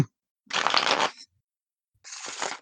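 A deck of cards being shuffled, two quick riffling bursts of rapid crisp flutter separated by a short pause, with no talking.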